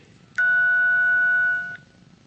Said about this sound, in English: So at the same time, everyone's going to hit the number of their keypad, 5, 4, 3, 2, 1, representing where you are. Ready? 1, 2, 3.